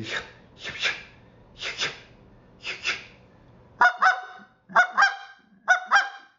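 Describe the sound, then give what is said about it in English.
Four breathy, rasping pushes of air lead into three crisp double clucks on a goose call, each a quick pair of sharp honking notes, evenly spaced and loud, with no talking. “Now you can start working the next week on doing nothing but this double cluck.”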